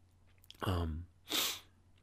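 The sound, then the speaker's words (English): A short voiced, throaty snort followed by a sharp, hissing sniff through the nose, two quick moist sniffles with no talking around them. “I still have the sniffles, huh?”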